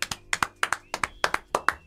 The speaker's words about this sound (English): I'll allow the clapping on the podcast.